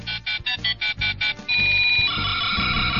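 A toy cell phone rings with a rapid series of bright electronic beeps that merge into a steady, tinny melody, loud, with no one talking.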